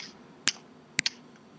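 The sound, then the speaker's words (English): Sharp, crisp hand claps: one on its own, then after a brief pause two more in quick succession, fairly loud. “Can you just do another clap for me?”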